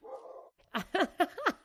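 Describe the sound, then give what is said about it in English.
A dog lets out a quick run of four sharp barks, fairly loud, following a brief low rumbling whine at the start. “Yeah, I don't know who he's barking at.”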